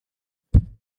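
A single heavy, muffled thump of a person's head dropping onto a microphone, loud, with a booming low-end knock that quickly dies away in an otherwise silent moment.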